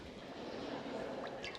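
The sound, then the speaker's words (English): Water drips and trickles over a steady wash of liquid noise, with a few brighter plinks of droplets landing near the end. “I'm going to show you this water that feels really cool right now.”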